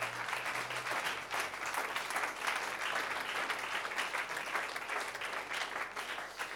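An audience claps steadily, a dense, continuous wash of many hands with no break, holding an even loudness for several seconds and no voices rising above it.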